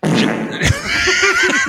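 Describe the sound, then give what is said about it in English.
A loud, drawn-out fart that opens with a low blat and then squeaks into a wavering, high-pitched whine for over a second. “This guy right here next to me just farted.”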